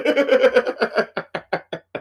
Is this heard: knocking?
yes